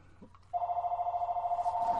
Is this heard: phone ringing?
yes